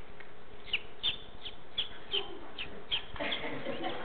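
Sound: person imitating bird calls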